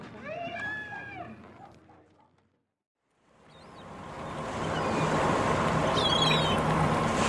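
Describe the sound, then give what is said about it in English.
After a short voice-like sound and a pause, a river cargo boat for ferrying goods moves slowly through water: a steady churning wash swells in and holds, fairly loud, with faint high chirps above it. “is there any particular reason why this boat is traveling so slowly?”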